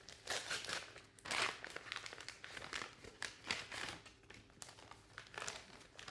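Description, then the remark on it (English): Continuous paper crinkling and rustling as mail is opened, an envelope handled and torn open, with irregular bursts of crackly texture for several seconds and no speech. “Let's open a little mail, shall we?”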